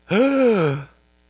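A single voiced gasp from an audience member, a drawn-out "ohh" of surprise lasting under a second, clear, with the pitch gently falling before it cuts off into silence.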